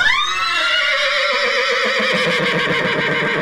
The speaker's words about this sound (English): Okay, insert a horse whinny here.